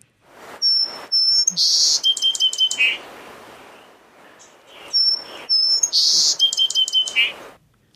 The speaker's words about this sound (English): It sounded like a bigger bird than it is. Right. They had really good miking on that little bird. A finch of some kind, perhaps?